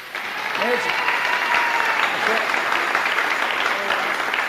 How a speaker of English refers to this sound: These are real glory. Give them both a clap.